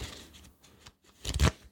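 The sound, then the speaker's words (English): A deck of playing cards being shuffled, a soft papery riffle that builds into a louder, crisp flurry near the end, with no one talking. “I've got a deck of cards here”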